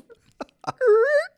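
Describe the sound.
A voice imitates a fart let out by someone stretching in a hot yoga class: a few quick mouth clicks, then a loud, half-second voiced squeal whose pitch slides gently upward before cutting off.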